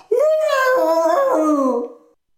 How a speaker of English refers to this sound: It scratched them across the face as fast as lightning, and the dogs howled in pain.